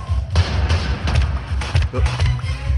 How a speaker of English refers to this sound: All right. Let's try this one. This is in Terminator 2. It's bullets hitting the T-1000.